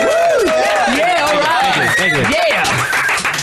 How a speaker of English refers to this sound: Good applause. It's all right, wasn't it? We could certainly create an atmosphere in this room.